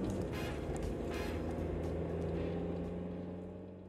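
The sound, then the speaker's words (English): A car engine roars steadily, a loud sustained drone with a low harmonic hum, as the car speeds through the streets toward a hospital before the sound fades slightly at the end. “Jones is behind the wheel of his car, speeding through the streets towards the hospital”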